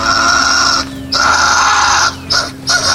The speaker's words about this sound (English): And then that of the fisher cat.